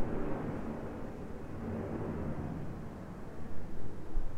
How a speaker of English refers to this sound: But first, 3 quick ways that airplanes can fly over us and ruin a fucking podcast. Can you hear this?